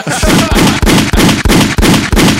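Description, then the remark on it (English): A rapid, loud volley of gunshot sound effects, about eight booming blasts fired in a steady rhythm roughly three per second, each with a heavy low-end thump and a short ringing tail. “Man, hit the gunshot.”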